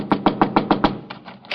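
Someone knocks on the door of a place with a room for rent, with a quick, even run of about six sharp raps, then a few softer, more scattered knocks. No voices.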